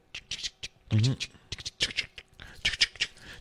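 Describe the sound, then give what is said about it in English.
A voice makes a quick series of breathy "ch-ch" bursts, mimicking the rasp of scratching a lottery scratch-off ticket, with a brief hummed tone partway through. Moderately loud. “Should I do like a ska ch-ch-ch-ch-ch-ch as you're scratching it?”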